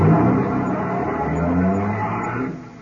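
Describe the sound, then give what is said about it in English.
A car engine revs loudly and the vehicle pulls away, its steady roar shifting in pitch before fading slightly at the end. No one speaks. “Friday and Romero here will cruise around the area with me.”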